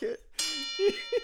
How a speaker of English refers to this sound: Give me the bell. Give me the bell.